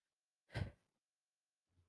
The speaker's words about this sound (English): Yawning again.